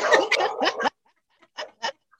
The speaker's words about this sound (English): Sorry, there's my dog.